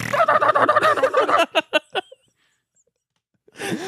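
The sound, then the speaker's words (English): A person vocally imitates a chicken with its head caught in spokes, a rapid warbling gobble followed by four short, choppy clucks, then a pause before another voice briefly starts. “They have like chicken head in the spokes that's just going.”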